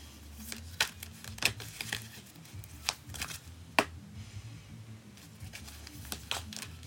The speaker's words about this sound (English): And I'm just shuffling the cards and tuning in.